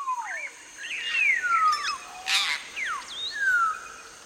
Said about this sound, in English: Certain vocalizations seem to be aggressive. Certain ones seem to be affiliative. A pair-bonded bird had vocalizations they used with one another to identify one another.